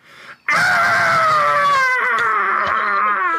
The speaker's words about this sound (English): That's … screaming.